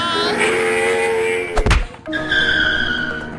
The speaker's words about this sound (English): I'm looking around and there's 6 motorcycles circling the campground menacingly.